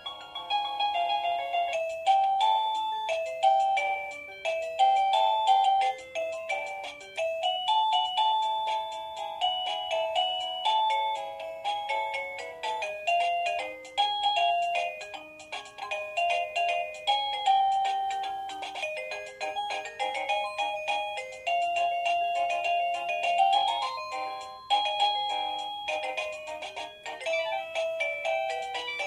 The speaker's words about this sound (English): An actual doorbell. Oh, no. Westminster. Yep. There's a doorbell. There's the doorbell. Oh, I like that one.